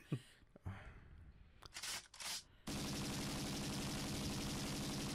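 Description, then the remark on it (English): A gunshot sound effect, played in place of fireworks: a few scattered gunshot bursts give way to a loud, continuous stretch of rapid automatic gunfire that hammers on steadily to the end, with no voices. “Those are gunshots.”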